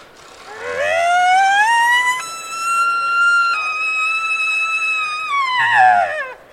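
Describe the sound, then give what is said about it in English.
An imitated elk bugle made with a call and a tube: a low guttural growl, then a rising high whistle held for several seconds, falling away into a second growl at the end, loud and alone. “Growl at the beginning, growl at the end gives it that deep guttural sound that elk have, and put it together with the tube, and there we go.”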